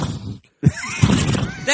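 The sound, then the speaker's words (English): A person voices a quick, wavering horse whinny in two short bursts separated by a brief pause, fairly loud. “That's a hack impression of a horse.”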